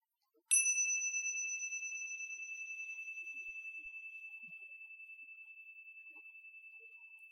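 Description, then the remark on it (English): A single meditation bell is struck once, ringing out clearly with a pure, sustained tone that slowly fades over several seconds. “So this time, what I'm going to do is sound the bell again, but this time, what you do is you ignore the sound of the bell.”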